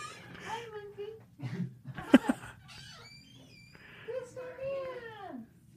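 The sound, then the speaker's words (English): A cat named Monkey meows several times at a cat door, drawn-out and plaintive with wavering pitch, broken by a sharp knock partway through and a low hum underneath. “Is that baby here in the room with you?”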